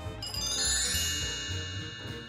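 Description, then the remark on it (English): A bright, ringing chime with several sustained metallic tones that shimmer and slowly decay, moderately loud, with no voices over it. “Chime.”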